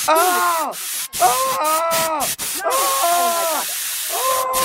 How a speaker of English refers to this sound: I'm just going to spray.